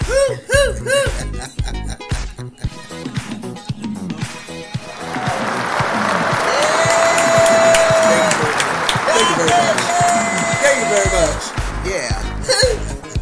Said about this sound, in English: And we are celebrating the fabulous over 2,000 shows. Woo! And I'm trying to get some clapping.